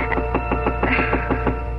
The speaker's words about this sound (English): And so the prince climbed the steep stairs to the garret room where Cinderella slept. And he knocked on the door.